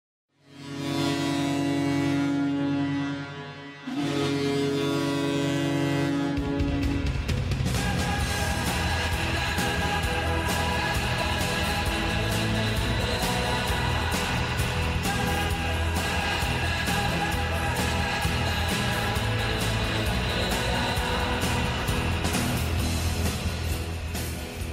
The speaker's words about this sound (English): Yes, that was the famous Foghorn, or the Tor Hymne, from Werner Bremen.